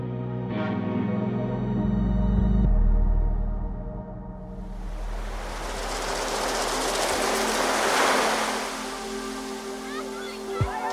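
A low, humming musical tone fades out, and then a broad rush of ocean surf swells in on the shore, crashing and washing with a loud peak before receding into a steady roar.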